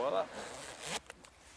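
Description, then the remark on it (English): A wetsuit zipper is pulled up on a person by someone else in one steady rasping stroke lasting under a second, followed by a couple of faint clicks as it settles. A brief voice sound comes just before. “zip me up.”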